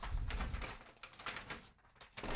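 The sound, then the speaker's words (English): Paper rattles and crinkles in a quick run of dry, crackling bursts, fairly loud and uneven, with a brief lull near the end before another rustle. “Could I be making more paper rattling noises?”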